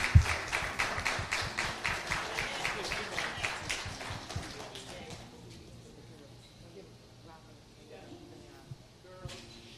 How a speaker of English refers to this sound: Can we clap for all the children today, please?